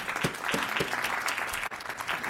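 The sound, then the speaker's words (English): A crowd claps steadily to thank a woman who helped teach a catechism class on the Old and New Testament, a dense wash of many overlapping hand claps with a few sharper individual claps standing out, fairly loud and continuous throughout. “Give her a hand of clap.”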